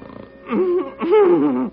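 Two loud, drawn-out snores in quick succession, each a rough, throaty rumble that rises and falls in pitch, a performer imitating John Bickerson snoring in the radio comedy The Bickersons, with nothing else underneath.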